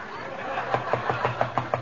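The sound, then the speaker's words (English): A knock at the door: a quick, even series of about seven raps with a hollow thump to each, over faint background hiss and no talking. “Answer the door, dearie.”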